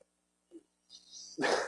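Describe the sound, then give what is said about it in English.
A short low yip, then a brighter rising noise that builds into a loud, harsh burst at the end, like a dog barking. “The dog's misbehaving.”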